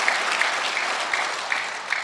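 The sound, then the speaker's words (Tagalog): A crowd applauds steadily for about two seconds, a dense, even wash of clapping with a few sharper claps standing out, and no one speaking over it. “Lakasan niyo po yung palakpak.”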